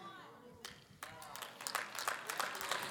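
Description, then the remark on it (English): An audience breaks into scattered hand claps that build quickly into steady, overlapping applause, growing louder toward the end, with a faint murmur of voices beneath. “You don't have to clap.”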